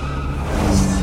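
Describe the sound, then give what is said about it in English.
A police car brakes hard, its tires skidding and squealing against the road in one loud, continuous screech lasting about a second, with no voices. “Sheriff Labrador tapped the brakes to slow his police car down.”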